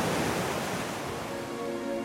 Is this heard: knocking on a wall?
no